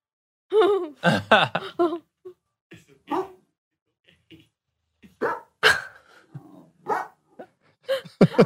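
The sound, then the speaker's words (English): A dog barks in short, loud bursts at seeing itself in a video game: a quick cluster at first, then scattered yips and whiny barks separated by brief pauses. “So the dog, he made his dog, this guy, this Reddit user made his dog in the game, and his dog did not take very kindly to seeing himself in a video game.”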